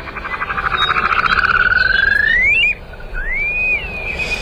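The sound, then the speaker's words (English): An upland sandpiper (Bartramia longicauda) calls: a rapid bubbling trill that rises steadily in pitch and ends in a sharp upward whistle, then a second, shorter rising whistle that slurs downward, all loud with no talking. “It's Bartramia longicauda, the upland sandpiper.”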